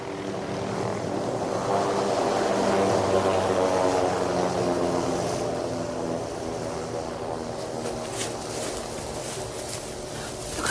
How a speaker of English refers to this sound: I can hear a big one. Sorry. Helicopter. It's landing on the front lawns of the embassy.